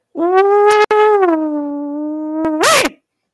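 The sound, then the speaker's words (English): A human voice lets out a long, wavering howl, a sustained tonal wail that holds steady and then rises in a quick whoop at the end, mimicking a dog's howl. “You got to give us an ooh-wee or something.”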